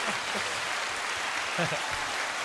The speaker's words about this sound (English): Yo, give him a round of applause.